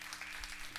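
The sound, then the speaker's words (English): Audience applause at a church, a brief burst of many hands clapping together into a dense, steady patter at moderate loudness, with no voices standing out. “One more time. Round of applause.”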